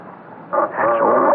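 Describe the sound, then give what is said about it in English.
A puppy named Patchy yips: a short, high bark followed by a longer, drawn-out whining yip, fairly loud against a quiet background. “Why, that ain't nothing but a pup.”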